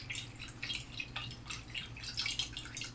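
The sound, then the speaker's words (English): Liquid developer is poured steadily into a film developing tank for a 3-minute development time, a continuous trickling splash lasting several seconds over a faint low hum, with no talking. “And we've got a 3-minute dev time, so let's go. Otter Pop, bottoms up. Pouring in.”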